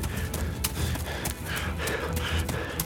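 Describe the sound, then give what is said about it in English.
A horse-drawn wagon approaches a cabin, hooves clopping unevenly over a steady low rumble, with occasional snorts and heavy breathing from the horse, moderately loud. “As he looked out the front door, he could see a wagon approaching the cabin.”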